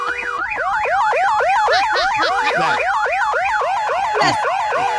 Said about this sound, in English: You know what the one I want? I want the old car alarm. If you get within 6 feet of me, you'll hear this. Turn it up.